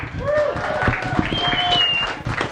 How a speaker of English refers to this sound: Let's give him a hand.